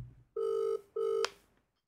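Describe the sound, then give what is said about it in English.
Two steady electronic ring tones from an outgoing phone call, each under half a second with a short pause between, clear and moderately loud with no talking. “Okay, it's ringing. It's ringing.”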